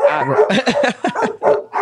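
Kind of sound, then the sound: animal, dogs barking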